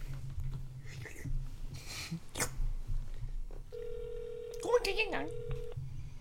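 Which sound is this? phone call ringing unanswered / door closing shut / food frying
phone call ringing unanswered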